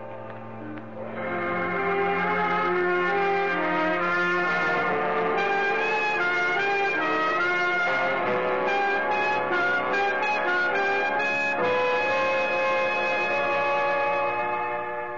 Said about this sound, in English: A light fog had rolled in to blur the lights in the harbor by the time we got back. And the foghorns were calling nervously to one another.